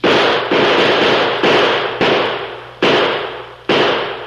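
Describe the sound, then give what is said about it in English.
Six loud gunshots are fired out a window to keep the Lone Ranger at a distance and cover a getaway. They ring out at uneven intervals, each a sharp crack followed by a long, fading echo that carries into the next shot. No voices are heard. “Pump some more slugs out this window with me.”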